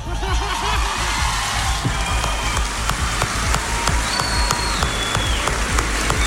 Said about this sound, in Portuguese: Sente os aplausos da galera, né? Isso aí. Isso foi lá no meio da galera.